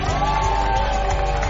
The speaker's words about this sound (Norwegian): Litt jubel.